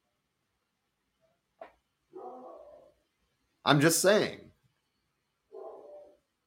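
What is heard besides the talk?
dog barking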